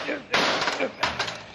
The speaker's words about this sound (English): Now, wait till I smash this old rusty padlock.